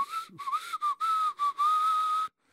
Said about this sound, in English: give him your whistle. No, not my whistle.